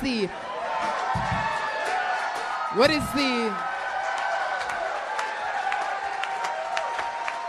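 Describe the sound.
A crowd at a live show cheers excitedly as Ron White appears, a dense, steady roar of overlapping voices, shouts and whoops with scattered clapping, holding loud for the whole stretch with a brief sharp burst midway.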